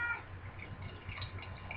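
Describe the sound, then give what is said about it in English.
A male cat meows steadily over about two seconds, a drawn-out, slightly wavering cry, with no talking over it and a low hum in the background. “The cat approves.”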